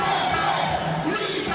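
A large crowd at a vaccine mandate protest in Switzerland shouts and roars together in a continuous, loud wall of voices, with overlapping yells and chanting filling the whole moment.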